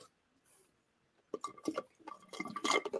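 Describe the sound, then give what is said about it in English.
After a quiet second, water splashes and gurgles, as if poured into a glass or cup, growing fuller and louder toward the end. “I'm going to grab some water.”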